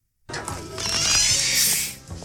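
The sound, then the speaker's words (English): A door opening: a steady mechanical creaking and rattling lasts about two seconds, with a bright grinding edge, then fades out with a small bump at the end. No one speaks. “So clearly I'm looking for that first weird noise that happened. It's a door opening.”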